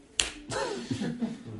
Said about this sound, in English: Okay. This is starting to hurt and get red. But if they would stop messing up, I would just have to know. Of course, I slap my forehead, but this is me.